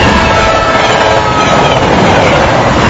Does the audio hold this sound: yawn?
no